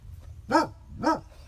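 A dog barks twice in quick succession, each bark short and harmonic with a slight rising-falling pitch, followed by the start of a third bark over a low background hum.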